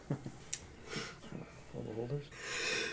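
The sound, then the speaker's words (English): A breathy build-up of sharp gasps and sniffs ends in one loud, hissing sneeze. Faint voices murmur in the background. “Bless you.”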